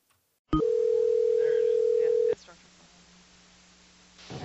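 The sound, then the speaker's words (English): A loud, steady telephone dialing tone, heard while calling someone back, holds a single electronic pitch for about two seconds, then cuts off abruptly, leaving faint line hiss. “Okay, so let's try to get Shane back on the phone.”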